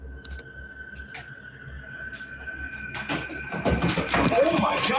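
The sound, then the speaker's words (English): Running footsteps heading towards the camera holder come in around the midpoint, a quick, irregular patter of thuds that grows steadily louder over a low hum and a faint steady tone. “Watching that again, or listening, you can hear what sounds like footsteps running towards the camera holder.”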